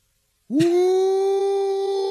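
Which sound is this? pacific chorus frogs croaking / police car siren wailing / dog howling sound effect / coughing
dog howling sound effect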